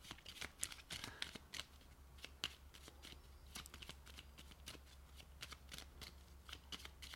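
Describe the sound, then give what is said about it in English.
A deck of cards being shuffled, a steady run of quick, crisp riffling snaps spread over several seconds, with a low hum underneath and no talking. “Got a good shuffle here.”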